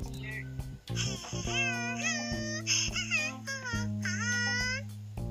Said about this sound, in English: Okay, I think we have to let our audiences listen to this alarm clock. Sure. Okay, wait a minute. Here.